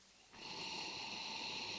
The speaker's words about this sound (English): Well, we should have a sniff. Sniff first, yes, of course. So swish, yeah. Swish. Swish, swish.